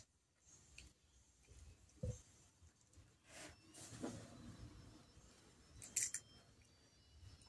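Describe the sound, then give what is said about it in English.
Crisp, crunchy chewing of food, a few sharp crackling bites spaced a couple of seconds apart over quiet background noise, with no talking. “She found the crunch.”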